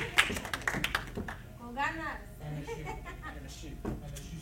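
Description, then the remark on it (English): An audience gives a brief burst of scattered hand claps, a handful of sharp, uneven smacks in the first second, followed by voices calling out and murmuring. “Get one hand clap for that.”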